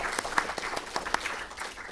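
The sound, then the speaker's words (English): An audience applauds the panel guests at a Q&A event, a dense patter of many hands clapping with a few sharper individual claps standing out, steady and moderately loud throughout. “A round of applause for everyone, please.”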